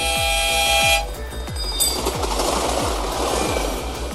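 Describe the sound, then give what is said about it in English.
A loud train whistle toots for about a second, then gives way to rushing noise as a steady rhythmic chugging beats underneath throughout. “Choo-choo!”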